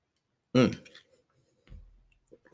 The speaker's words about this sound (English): I'm going to take a sip real quick, y'all. Let that marinate in y'all minds.